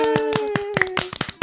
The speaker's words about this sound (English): Hey, you clapped. Thank you. You didn't have to at all. That's awesome.